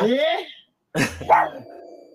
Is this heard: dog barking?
yes